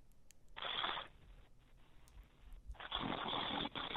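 Someone snoring: a raspy, rushing breath, a quieter pause, then a longer, louder snore that runs almost to the end.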